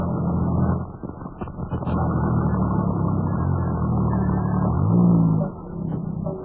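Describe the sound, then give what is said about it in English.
A car engine rumbles, swells briefly as the motor rises in pitch, then drops back to a lower, steady idle as Professor Nicholsworthy's car comes to a halt. No one speaks. “Well, he's stopping his car.”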